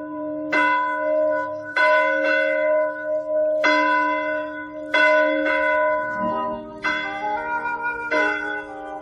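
Church bells ring out in a steady peal, several bright, resonant strikes overlapping with long humming decays, shifting to a different set of tones partway through. No voices.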